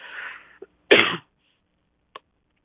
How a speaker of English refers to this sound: Excuse my coughing.